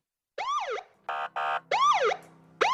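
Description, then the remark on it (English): A police siren blares loudly, its rising-and-falling electronic wails broken up by short, steady honking blasts, with no voices over it. “Sirens blaring, red and blue lights flashing.”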